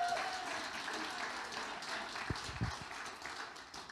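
A crowd applauds steadily for a few seconds, a dense wash of many hands clapping at an even, moderate loudness, with a few low thumps partway through.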